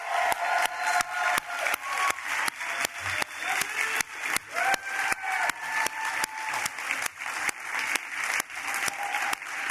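A crowd claps steadily in dense, sustained applause for about ten seconds, loud and even throughout, with faint cheering or whistles rising above it and no speech.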